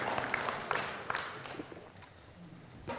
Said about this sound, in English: Oh, I love the round of applause for Jesus, right?